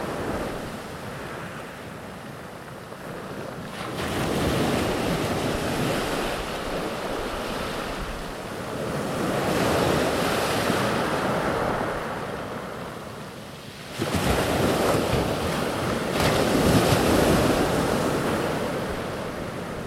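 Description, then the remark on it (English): Sea waves break on Chesil Beach on the south coast in Dorset in a steady, roaring wash, with several louder surges rolling in every few seconds. Wind hiss sits underneath, and no voices are heard. “So, for the next minute, I'll leave you with the sound of Chesil Beach before the edited broadcast.”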